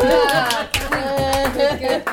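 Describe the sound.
An audience at a poetry reading claps steadily for a couple of seconds after a poem, the dense patter of many hands mixed with voices calling and cheering over it.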